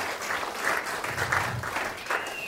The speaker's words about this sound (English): And my wife, sat over there, has one of these Peloton Centurion t-shirts. And I think that's worth a round of applause. Yes, yes it is.